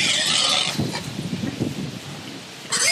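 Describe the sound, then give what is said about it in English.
A pig squeals loudly and shrilly, then a stretch of lower grunting and shuffling follows before another sharp squeal cuts in at the end. “What is this? Pig squealing.”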